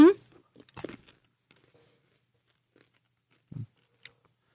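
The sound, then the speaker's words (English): Crunchy chewing of a honey peanut M&M candy, a cluster of crisp bites at first, then scattered softer crunches separated by quiet pauses. “I taste nothing except peanut M&M.”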